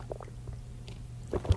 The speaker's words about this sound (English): And I'm still drinking my water.